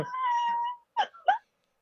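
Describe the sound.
A person imitates a dog's laugh: a drawn-out, high whining tone, then a short pause and two quick, breathy yelping huffs.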